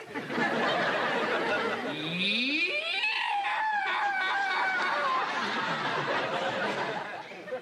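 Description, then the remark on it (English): A man lets out a loud primal scream, greeting the men at a male bonding group session; it sweeps upward in pitch and holds for a couple of seconds, with a busy, noisy background throughout. “Men, I greet you with a primal scream.”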